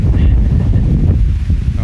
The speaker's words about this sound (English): Dear listener, I hope that the wind is not too annoying to you and you'll stick with us here. We're just getting big gusts and all the shagbark hickory nuts are coming down here and the red oak acorns.